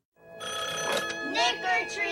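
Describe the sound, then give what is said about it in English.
A telephone rings steadily and fairly loud for about two seconds, its bright electronic tone sustained throughout while voices sound over it. “But don't just sit there waiting for your phone to ring.”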